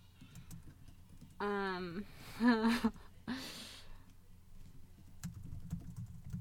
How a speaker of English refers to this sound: Oh, well, we're just both typing.